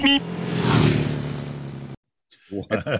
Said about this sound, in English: In West Virginia, a reporter was hit by a car, both filming a live broadcast.